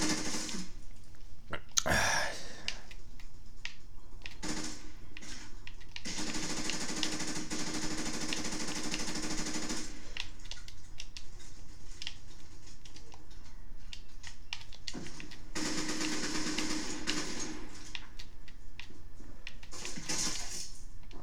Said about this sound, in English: And then shit picked up in Call of Duty. Fucking asshole. It's just people camping with machine guns.